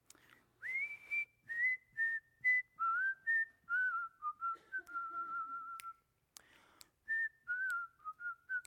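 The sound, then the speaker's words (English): Someone whistles a bouncy, lilting melody, a string of clear, sustained pure tones stepping up and down in a tune, with short breaths between phrases and no voices or instruments. “It started with a whistle. It was all a cappella. There was no instrumentation.”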